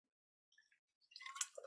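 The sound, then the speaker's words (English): Someone takes a quiet sip of water, a couple of faint wet clicks followed by a brief burst of slurping and swallowing sounds. “Water break.”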